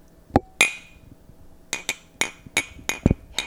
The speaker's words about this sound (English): We'll just clink our glasses. Oh, with like, can we do something ASMR-y? How the fuck do you? Oh, you want to put like the mic next to it? Yeah, like can we clink? Like can we clink the mic too?